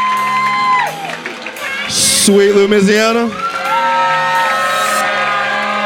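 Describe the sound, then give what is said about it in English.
A comedy show audience whoops and cheers loudly for a winning comedian, with bursts of clapping and high shouts rising and falling over a few seconds while a voice calls out over the noise. “So a little more applause right there.”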